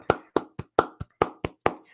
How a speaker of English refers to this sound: So, round of applause. My Jason Garrett clap.